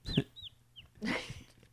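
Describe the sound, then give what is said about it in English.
A person mimics bird calls, making a few short, squeaky chirps and clucking bursts in quick succession, loud and uneven, with no other talking. “Yeah, you should do that for like a living, like, you know. Bird sounds?”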